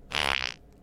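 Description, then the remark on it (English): A short, buzzy fart sound effect lasting about half a second, loud with a raspy, fluttering tone before cutting off abruptly. “The obnoxious laugh was better than the fart.”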